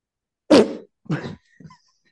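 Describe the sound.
A voice imitates farting with three sputtering, buzzy bursts: a loud first blast, a slightly softer second, and a brief faint third, each separated by short pauses.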